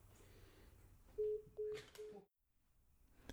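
Three short electronic keypad beeps from a phone being dialed, spaced a fraction of a second apart over low background hum, followed by a brief silence.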